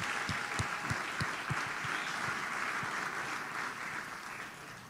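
An audience at an Atlanta Tip-Off Club presentation applauds steadily for executive director Eric Oberman, dense clapping with a few sharper individual claps standing out early on before the applause gradually thins.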